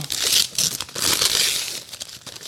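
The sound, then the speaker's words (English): Hello Kitty gift wrapping paper being torn open on a present holding a Nintendo Switch case, a loud, continuous run of crinkling and ripping with brief pauses, and nobody talking. “and he wrapped it in Hello Kitty wrapping paper.”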